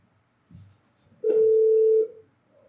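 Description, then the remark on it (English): A loud, steady telephone tone sounds once for under a second as a phone call is placed, preceded by a brief low thump and followed by quiet. “And to start it off, we are now going to call the king of punk and wrestling, if I can remember my outfit.”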